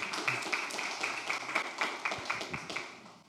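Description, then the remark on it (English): Steady applause from a church audience during a sermon, for people who have just shared their stories, a dense wash of many hands clapping at once that holds for a few seconds and then starts to thin out. “But let's give them a round of applause.”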